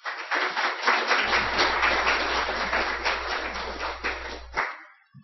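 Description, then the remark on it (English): An audience applauds steadily for about four and a half seconds to welcome Professor Middleton, speaking on a responsible interpretation of Genesis 1. It is a dense, crackling wash of many hands clapping at once that holds strong before stopping abruptly, with a low hum underneath. “He's the author of numerous books and also articles, so let's give Professor Middleton a round of applause.”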